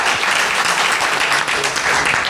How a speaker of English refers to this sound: Big applause.